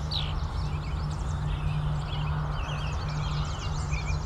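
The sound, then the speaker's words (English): Steady, overlapping birdsong from American robins and other warblers, many quick high chirps and trills throughout, with a couple of Canada geese going overhead, over a constant low hum and background hiss; recorded with an Edutage EIM001 omnidirectional microphone in a very light breeze. “Hear some American robins, the other warblers, just a couple Canada geese going overhead.”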